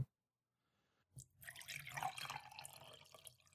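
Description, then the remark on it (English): After a second of silence, water starts running from a tap into a bowl being filled as a drink, a steady splashing stream with a slightly rising fill tone that continues to the end. “Gotta get her some water. All right. Here's the bowl.”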